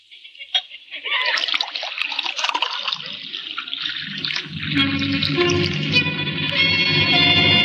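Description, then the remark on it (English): Homemade elderberry wine pours steadily into a glass, a continuous gurgling splash whose tone rises as the glass fills, lasting several seconds after a brief clink at the start. “Pour him a glass.”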